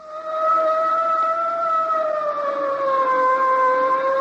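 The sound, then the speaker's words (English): A police boat siren in New York wails steadily and loudly, holding a sustained tone whose pitch sags slowly lower across a few seconds, with no voices over it. “Suddenly from nowhere, an official boat. A police boat.”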